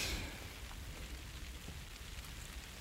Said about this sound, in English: And it's raining and it's dry under it.